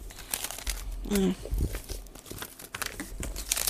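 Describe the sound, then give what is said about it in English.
Irregular paper rustling and crinkling with brief tearing-like crackles, continuous across a few seconds, with a short low tonal blip partway through. “A lot of paper shuffling.”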